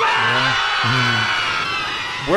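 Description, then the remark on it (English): A group of people on a plane screams loudly and continuously over a dense, steady roar as the plane slowly descends. Several wavering cries overlap, with one rising shriek near the end. “So the line, "We're all gonna die," sticks out in my head, but then the people screaming as the plane slowly and safely descends is one of my favorite parts of the episode.”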